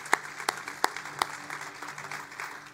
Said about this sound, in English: Let's put your hands together and just give the Lord an offering of praise.